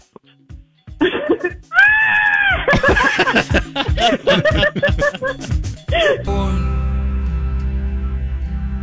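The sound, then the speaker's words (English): A man lets out a long, loud, strained scream with rising and wavering pitch, broken into sharp vocal bursts, before a steady humming music bed takes over. “One more scream.”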